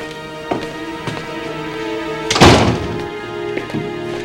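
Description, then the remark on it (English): A door swings shut with one solid, fairly loud thud near the middle, set among a few lighter knocks and clicks over a steady low hum. No one speaks. “Close the door.”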